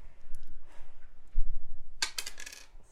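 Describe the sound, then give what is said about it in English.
A small die, rolled for armor in a tabletop game, clatters onto a hard tabletop, a quick burst of bright rattling clicks as it tumbles and settles, fairly loud after a moment of quiet room noise. “I would try a different dice, sweetie.”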